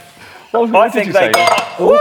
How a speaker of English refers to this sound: That's actually the second glass I've dropped today.